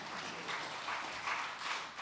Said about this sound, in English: Look at some, yeah, you can clap for that. Amen.